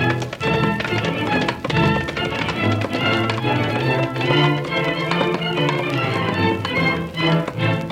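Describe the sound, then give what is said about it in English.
Galloping hoofbeats of outlaws' horses pound in a fast, steady rhythm, loud, stirring a cloud of dust, over a dense, busy background of sustained tones that lasts the whole time. “The thundering hoofs of the outlaws' horses stirred a cloud of dust that thoroughly concealed a little half-breed Indian that had been riding with the men, unnoticed by them.”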